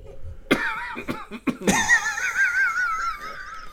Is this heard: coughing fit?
yes